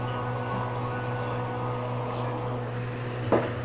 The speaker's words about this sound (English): Excuse me, I have my damn chair cracking up. I have even a new motherfucking chair, y'all.